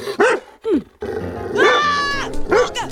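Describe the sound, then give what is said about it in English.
A dog growls and snarls while biting a person's arm, in several short, gruff bursts, with one longer, rising snarl in the middle, fairly loud, and no talking over it. “I see, it's empty because the dog is biting my arm.”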